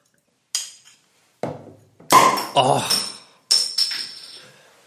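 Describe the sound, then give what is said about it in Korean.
A bottle of Maisel's Weisse wheat beer is opened: a series of five sharp metallic and glassy clinks and clatters, spaced irregularly, with a faint hissy tail after the louder ones. “자, 그럼 까겠습니다.”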